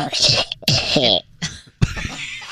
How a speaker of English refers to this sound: And then, of course, I'm like triggered by people coughing around me. I'm like, oh, God, why? I know. Cover that cough.